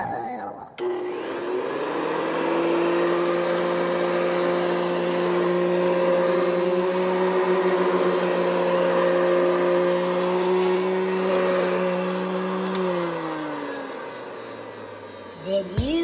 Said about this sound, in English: sounds like somebody took out the vacuum cleaner.